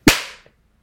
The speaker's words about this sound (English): I mean, that's definitely... That was the most synchronized as you can get. I was like, seeing each other, I feel really good. I was like, did you guys clap? Because I didn't even hear you clap. I just heard I had one of the best claps of my life